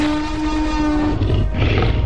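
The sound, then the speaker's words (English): A loud, drawn-out dinosaur roar in a Walmart advertisement for Jurassic World Dominion opens with a steady, low, horn-like tone, then breaks into a rough, grinding growl that fills the final second. No voices accompany it. “Get ready to roar.”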